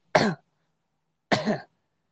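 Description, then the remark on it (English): A person imitates a man at a restaurant bar coughing without covering his mouth: two short, harsh coughs about a second apart, loud, with silence between them and no other talking. “But so I'm sitting there, dude, and this dude's coughing. Like, he's just sitting there and he's being like...”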